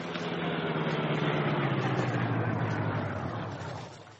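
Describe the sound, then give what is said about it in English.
A car engine hums steadily with a low, continuous rumble as the car drives off the road toward a shore by moonlight with its lights off, then eases off slightly at the very end. No voices. “Guard not see car moving toward shore.”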